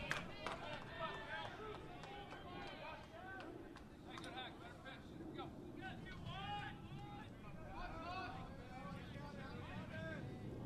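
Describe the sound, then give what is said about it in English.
Airplanes flying overhead near LAX, close to the LMU campus, make a steady, loud low roar that fills the whole stretch, while voices chatter on top of it throughout during a college baseball game between BYU and LMU. “You can hear the airplanes flying over LAX, very close to the campus here at LMU.”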